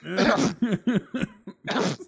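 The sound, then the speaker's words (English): A voice acts out a quick run of about six loud, voiced coughs, uneven in rhythm, with a longer cough at the start and another at the end. “It's like that one episode of Family Guy who's like, Peter, when you kept coughing in class, cover up your farts.”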